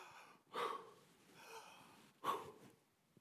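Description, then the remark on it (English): A person breathes heavily and audibly, two loud, forceful breaths roughly two seconds apart with softer breathing between, without any talking. “And then you start doing something called panting.”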